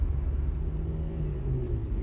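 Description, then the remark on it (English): A car's steady, heavy low rumble as it drives down the road at about 90 miles per hour with the pedal all the way down, continuous throughout with no change in pace and no voices. “The pedal is all the way down. The car is going about 90 miles per hour.”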